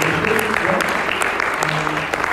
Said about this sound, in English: Firstly, I want to honor the leadership here at Glory City Church. Can we get a big round of applause?